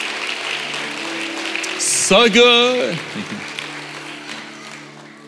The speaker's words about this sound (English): Come on, let's give those who raised their hand a great clap of encouragement. A great clap of encouragement.